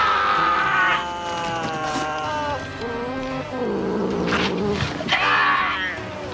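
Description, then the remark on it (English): A male cat named Pinky, available for adoption as pet of the week, meows loudly and insistently, a run of long, drawn-out, wavering calls that rise and fall in pitch, almost a yowl, with no talking. “And it has provided a place for people to upload terabytes of videos of their cats.”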